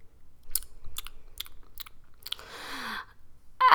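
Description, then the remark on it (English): Crunchy toast being chewed, with five sharp, evenly spaced crunches followed by a longer gritty, crackling grind, with no talking. “I'll sip some tea with honey and get some toast into my tummy.”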